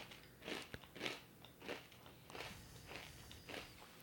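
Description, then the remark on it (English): Crisp crunching as someone chews a pita chip topped with ketchup, with a series of regular bites and brittle cracks about every half second, no talking over it. “All right, ketchup and pita chip. So you're going to have to give me a second to chew.”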